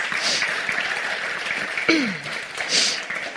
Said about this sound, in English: So if you would give our pastors a round of applause for me.